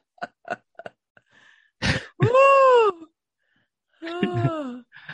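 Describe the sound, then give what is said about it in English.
A voice acts out a few quick sniffles and then a sharp cough, followed by drawn-out groaning vocal sounds, all fairly loud. “You know, you could just go to your hair and just sniffle a little bit. Sniffle, cough.”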